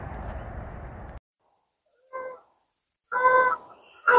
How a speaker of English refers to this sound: Gorgeous morning it is again. Geese are honking around. There's not a soul around.